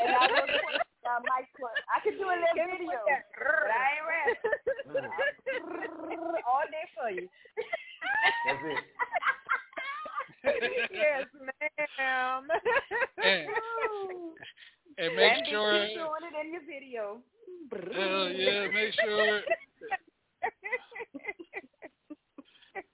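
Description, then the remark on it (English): A person imitates a cat purring, producing continuous voiced rumbles and whiny animal-like sounds in uneven bursts with short pauses, lasting about twenty seconds. “Even, well, actually, she just purring. I will purr for you.”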